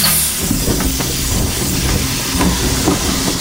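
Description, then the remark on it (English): Inflatable rafts of a rover's emergency flotation device hiss open off the side and rear entrances to buoy the vehicle, with a loud, steady rush of escaping air, joined by a low mechanical rumble and a few clunks along the way. “Should your craft encounter any deep water, inflatable rafts will open off the side and rear entrances, buoying the entire vehicle.”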